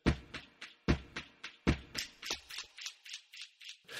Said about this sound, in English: grunting as he punches himself in the head again and again. I count the grunts as I pad my way into his room. One a second.